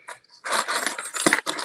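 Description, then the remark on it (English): Keys jingle and clink in a personal office filled with comic books, starting faintly and then rattling steadily for about a second as they are picked up and handled, with no talking. “I'm going to grab some keys.”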